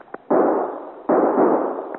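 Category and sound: sound effect, gunfire volley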